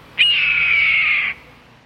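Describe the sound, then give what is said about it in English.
A single long, harsh, descending scream of a red-tailed hawk, loud, lasting about a second over faint background rumble. “Perhaps a bit of freeway birdwatching may ease the frustration of slow traffic, so watch for this bulky football of a hawk.”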